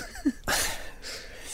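Someone yawns: a brief low vocal hum, then a long, breathy rush of drawn-in air that trails off into a softer exhale. No one speaks.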